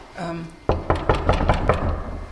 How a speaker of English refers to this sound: If you don't mind, I'm going to knock on the door and just see if there's anyone here today.